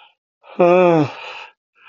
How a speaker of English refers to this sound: And this podcast is not about habitual yawning either, or chronic yawning. That's my affliction.